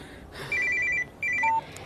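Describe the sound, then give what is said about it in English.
A mother's telephone rings in two short electronic trilling bursts separated by a brief pause, clear, with no one talking over it. “Mom, your phone is still ringing.”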